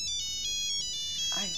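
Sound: cell phone ringtone ringing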